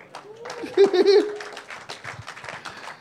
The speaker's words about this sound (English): Very tepid applause.